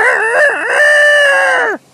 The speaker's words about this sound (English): All right, now I'm watching a rooster right now. Do you hear this? Or a cock. I'm watching a cock run across the parking lot. Hello, cock. It's a big golden cock with a red... The same to you, cock. With a red crown on its head.